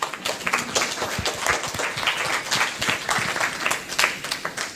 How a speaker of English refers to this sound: I think this deserves a huge round of applause for all of you. Yeah.